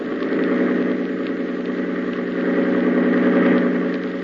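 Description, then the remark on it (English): A boat engine roars at full throttle, a loud, steady, throbbing drone with a deep rumble that holds constant for several seconds, with no voices. “hold tight to the wheel and open the engine up full.”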